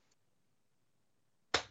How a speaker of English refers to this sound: And give me one more clap, please.